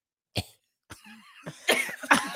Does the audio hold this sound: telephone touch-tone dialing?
no